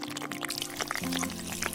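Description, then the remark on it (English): Coffee pours steadily into a cup for a couple of seconds, bubbly, with a faint rising pitch as the cup fills. No one speaks. “I'm making coffee.”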